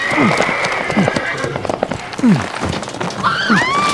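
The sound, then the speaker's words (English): Horse hooves clip-clop in a quick, uneven rhythm while a horse lets out high, wavering neighs and whinnies, with some snorting rising and falling in between. “Giddy up!”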